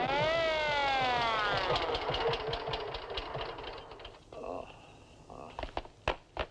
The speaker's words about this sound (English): Well, it's next morning before the air ambulance arrives to find the unconscious guard.